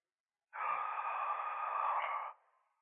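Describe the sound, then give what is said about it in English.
A single long, loud gasping breath of a person struggling to breathe, a harsh breathy rush of air held steady for nearly two seconds before trailing off, with no talking. “That was me gasping, by the way, as I struggle to breathe.”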